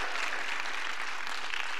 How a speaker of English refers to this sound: In fact, the screen says that we have 3,144 reasons to celebrate, because that's how many were rescued last year. I mean, I think we cheer louder at football games than we cheer for 3,144. So can we try that again? There we go.